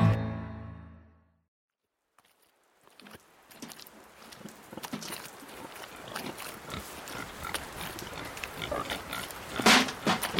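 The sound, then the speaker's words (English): Pigs grunt and snuffle, with wet squelching and sloshing as they slop about in trodden mud in rain and wind, bumping against one another and fighting for scraps. The scuffling grows busier and louder toward the end, after a brief low tone and a moment of silence at the start. “Pigs slopped about in the mud, bumping against one another, fighting for any scrap or morsel that lay half buried in the trodden slot beneath their hooves.”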